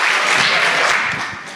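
Steady, dense applause from an audience, many hands clapping at once in a bright, continuous wash that holds loud and then tapers off slightly at the end.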